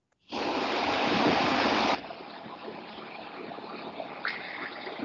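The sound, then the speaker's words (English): Shower water runs in a steady hiss, loud for the first couple of seconds, then dropping to a quieter, continuous spray that carries on to the end. No one speaks. “Is somebody taking a shower?”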